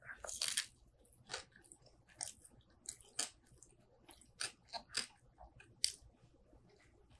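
Crisp crunching from biting into a Bubby's Pickles sour pickle on sourdough toast with melted butter poured on, with about a dozen sharp chewing crunches in an uneven rhythm, alone without any talking.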